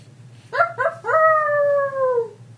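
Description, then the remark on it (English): A sled dog gives two quick yelps, then breaks into a long, drawn-out howl that slowly sinks in pitch, loud over a steady low hum. “After a few minutes of frenzied howling and barking”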